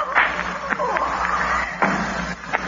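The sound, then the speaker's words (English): A brief scuffle: several dull thuds and knocks as a man falls and strikes a desk in an office, fairly loud, with muffled voices underneath. “He struck the desk when he fell.”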